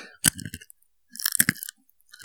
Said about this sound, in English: That was a good crunch. Ooh, that one popped.